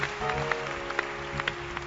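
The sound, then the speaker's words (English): An audience claps hands for Jesus during a healing testimony, with scattered, irregular sharp claps over a steady droning hum. No one speaks. “Can you clap your hands for Sunday, Jesus?”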